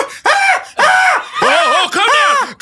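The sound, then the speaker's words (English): A baboon screeching after being asked who is in charge: four loud, harsh calls in quick succession, each sweeping up and falling back in pitch, with short gaps between them and no talking. “Oh, jeez, I guess the baboon's in charge.”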